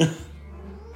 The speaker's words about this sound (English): The cat's about to meow.